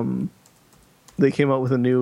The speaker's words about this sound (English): I'm going to go to our podcast hosting site and start typing in what we've talked about today.